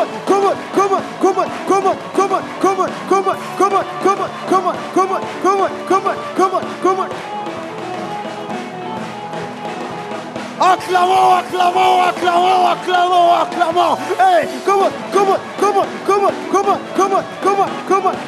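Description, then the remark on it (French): An audience shouts and cries out joyfully to the Lord as an offering of acclamation, in a steady rhythm, with many voices rising together over regular thumping beats, growing louder and more fervent partway through. “Offrande d'acclamation au Seigneur avec des cris de joie.”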